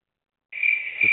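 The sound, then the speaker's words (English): A crickets sound effect: crickets chirp in a steady, continuous high-pitched trill that starts abruptly after a moment of silence, loud, with a faint low thump near the end. “More crickets for that one.”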